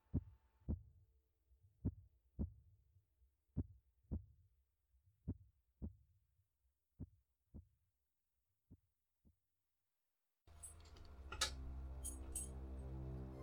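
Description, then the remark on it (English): A beating heart thumps in steady lub-dub pairs, about six double beats that gradually grow fainter, before a dense wash of sustained musical noise abruptly takes over. “Because even now, I can still hear that cursed, hateful heart.”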